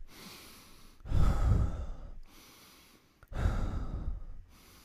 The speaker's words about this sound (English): Like, I do like this, and I just put it near my mouth instead of like on my nose. I want them to hear me breathe.